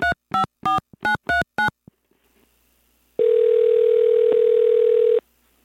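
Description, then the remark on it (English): A phone being dialed for an outgoing call to other automotive writers: six quick keypad beeps in a rapid row, a brief silence, then a loud, steady telephone tone holding for about two seconds before cutting off. No voices. “So I decided to pick up the phone and give some other automotive writers a call.”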